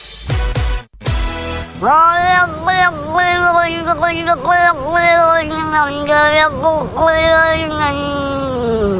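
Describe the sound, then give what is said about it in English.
A cat lets out a long, continuous, warbling yowl that wavers and dips in pitch for several seconds, loud, after a brief burst of noise at the start. “It sounds like a baby travelling very fast underwater. It's not. It's a cat.”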